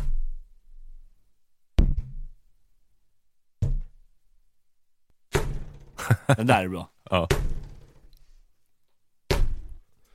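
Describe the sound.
An inflated balloon, blown up and then struck, is hit four times, each hit a deep, hollow thud with strong sub-bass and a short booming decay, spaced a couple of seconds apart, with brief talking between the later blows.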